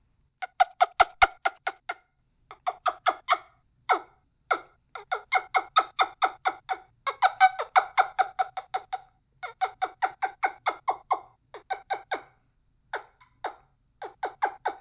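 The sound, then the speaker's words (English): A turkey call made by putting the smallest opening end of an ink pen's shell in the corner of the mouth and making a kissing sound gives quick, sharp yelping clucks in rapid rhythmic runs broken by short pauses. The squeaky, fairly loud notes continue alone, with no talking. “And what I'm going to do is put the unopened or smallest opening end of this pen in the corner of my mouth and make a kind of a kissing sound and see if we can make a turkey sound come out of the shell of an ink pen.”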